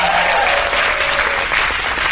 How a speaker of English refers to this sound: Thank you. Big round of applause